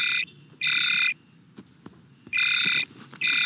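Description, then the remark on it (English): A shock vox communicator rings with a call from Richie to Virgil in loud, repeated bursts: four harsh, high buzzing tones, each about half a second to a second long, separated by short gaps with faint background clatter. “And at that point, the shock vox goes off, and Virgil realizes this is not a training related phone call, but Richie trying to alert him that this new villain, this wind powered villain, is attacking.”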